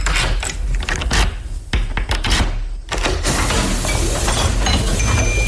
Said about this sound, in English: Well, I'll trust you to open the door. Thank you. Put in the keys there and we open this door up.